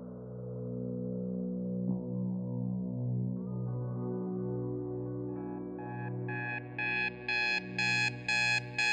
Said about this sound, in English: The alarm goes off.